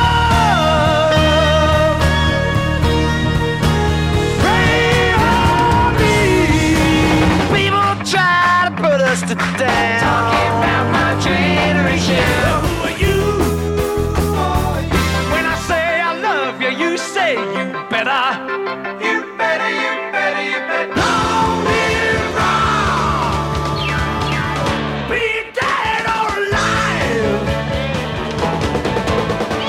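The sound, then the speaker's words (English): A loud, full rock song by a band with driving band and a singer's strained, soaring male vocal that rises into a raw scream, then the band crashes back in at full volume. “I gotta clear my throat whenever I hear him do that that scream there.”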